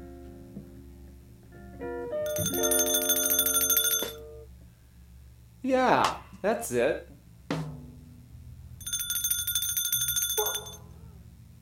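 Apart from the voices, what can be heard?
small bell ringing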